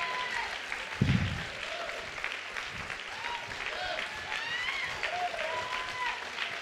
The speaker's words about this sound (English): Clap your hands. Come on, people.